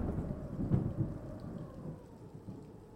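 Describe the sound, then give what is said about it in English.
Steady rain hisses over a deep, rolling rumble of thunder that swells early on and then grumbles on, with no voices: a fierce storm with stinging rain and bitter icy wind, on the way from Crown Street to Cleveland Street. “But with a fierce storm brewing, as Eliza battled to shield her babies from the stinging rain and bitter icy wind.”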